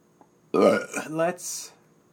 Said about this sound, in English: Oh, that burp smelled weird.